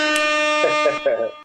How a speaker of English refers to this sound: Air horn.